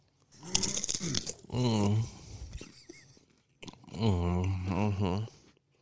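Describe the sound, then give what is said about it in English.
Crunching of a very salty snack being chewed, a quick cluster of crackly bites, followed by two drawn-out voiced murmurs or hums. “A nice little ASMR for everyone out there. Yeah, I think the only problem is that it's really salty.”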